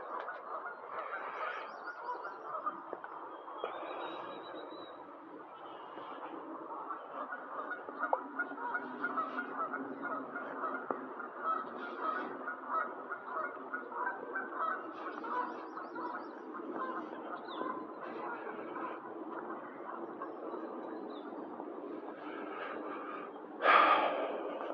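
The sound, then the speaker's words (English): Geese honk on a river in a steady outdoor chatter with airy, breathy calls, continuous over open ambience, with a louder honk near the end. “Look at this goose. It's really beautiful here on the river.”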